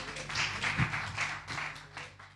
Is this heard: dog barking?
no